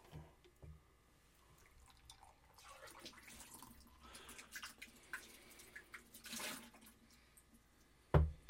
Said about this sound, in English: Need to get some water. That's down here. Rinse the glasses. Rinse, repeat. And go.